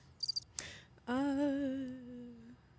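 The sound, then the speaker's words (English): A crickets sound effect: a few quick, high-pitched cricket chirps in a short pulsing burst, followed by a click and then a sustained, slightly falling humming tone that lasts over a second. “Give it the crickets, yep.”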